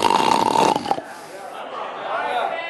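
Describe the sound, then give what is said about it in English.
A man's voice imitates snoring, with a loud, rattling, throaty snore lasting about a second, then a softer, breathy wheeze that trails off. No words are spoken. “That's the way we go from bragging and boring to snoring.”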